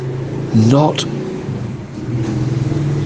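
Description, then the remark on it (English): A motorbike passes outside a house in otherwise silent surroundings, its steady engine rumble briefly rising in a quick rev before settling back into a droning hum that carries on to the end. “That's the first motorbike to pass in 2 days.”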